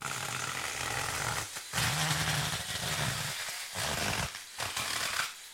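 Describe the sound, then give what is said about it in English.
A TacRite battery-powered mini chainsaw buzzes loudly and steadily, briefly dipping in pitch a few times as it bites into wood, with no voices over it. “There it is, folks. The TacRite mini chainsaw.”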